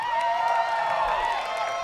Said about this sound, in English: Look at her. Can we just clap for this outfit?